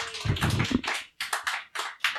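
A round of applause: dense, noisy clapping at first that thins into several separate bursts of claps with short pauses between them, fairly quiet overall.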